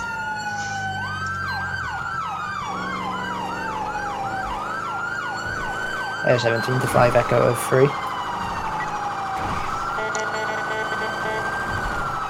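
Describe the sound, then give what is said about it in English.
A police car siren wails continuously while the car drives code 3 through an intersection, sweeping up and down in fast rising yelps, then shifting to a slower steady wail. A brief burst of radio chatter cuts in partway through, under the siren. “The cool thing about cop cars, we don't want to slow down in the intersection going code 3.”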